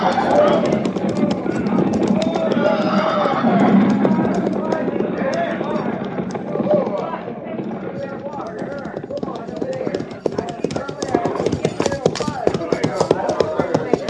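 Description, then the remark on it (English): Many horses' hooves of a mounted troop clip-clop in a dense, uneven patter as the riders slow to a stop at a creek, under men's voices talking, the clatter thinning into sharper, separate knocks toward the end. “Tell the men to dismount and unsaddle, pin graze and water.”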